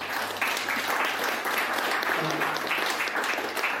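A crowd in Otapoti claps for a committee supporting the multi-ethnic communities network, many hands creating a dense, crackling wash of applause that holds an even, fairly loud level throughout without pause or speech.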